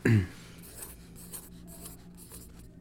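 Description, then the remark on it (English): Soft scratching of a pen moving across a piece of paper in short irregular strokes, preceded by a brief low thump at the start, with faint background noise underneath. “If anyone can hear that, he's actually writing on a piece of paper.”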